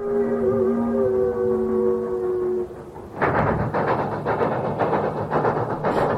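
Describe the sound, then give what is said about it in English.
A train horn sounds a long, steady chord for a few seconds, then gives way to the loud, rumbling clatter of a passing train with a rhythmic clack of wheels on rails. “Trains! Train! A railroad story.”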